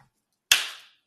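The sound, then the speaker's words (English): A single loud, sharp slap cracks out after a moment of quiet as one person slaps another, its bright smack trailing off quickly into silence, with no talking. “I should slap the shit out you.”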